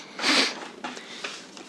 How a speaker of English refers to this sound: I have a bit of a sniffle right now, guys. I've had a cold for the last couple of days. It's been quite annoying. It's been getting on my nerves, to say the least.